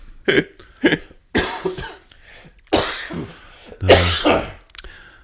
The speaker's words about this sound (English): You should time our coughs so it's easier to edit out. Oh, I always feel like there's just one on the verge of happening at all times at the moment.